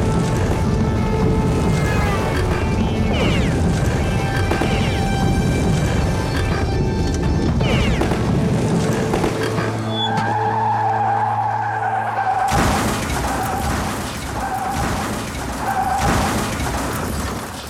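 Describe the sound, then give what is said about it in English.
Loud, continuous car chase, with cops in a commandeered golf cart in pursuit, roaring engines and screeching, skidding tires, a sustained horn-like blare midway, then an abrupt burst of harsh noise as the pursued driver crashes. “Hey, he's crashed!”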